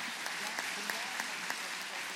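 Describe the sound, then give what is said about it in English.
A church audience applauding a family, with many hands clapping in a dense, steady patter and a few sharper claps standing out. “Can we give this family a round of applause?”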